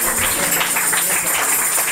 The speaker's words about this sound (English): In the name of Jesus, clap your hands for Jesus.